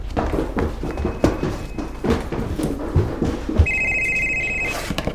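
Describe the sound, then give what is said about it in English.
A cell phone rings with a bright electronic tone that starts partway through, heard over a busy background of shuffling movement and scattered thumps. “Do you hear that? What is that? That is my cell phone.”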